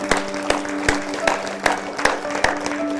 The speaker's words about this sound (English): Can we give the Lord a big hand clap? Come on, somebody.